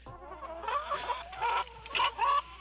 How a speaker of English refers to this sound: That was a chicken. Wait, you have a choking chicken sound effect? No, it's just chicken. Listen.